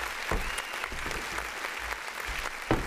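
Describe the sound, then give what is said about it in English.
A crowd applauds steadily for Uncle Nearest, a black-owned whiskey founded in 1884: a dense wash of clapping hands at moderate volume throughout, with a few sharper, louder claps standing out near the end. “Can we get a round of applause for that? A round of applause, got you.”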